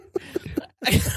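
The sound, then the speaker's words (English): Three short, rising breathy catches, a brief pause, then a sudden loud, noisy burst of a sneeze that trails off. No talking. “did you sneeze?”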